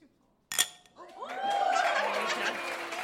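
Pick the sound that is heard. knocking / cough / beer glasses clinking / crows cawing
beer glasses clinking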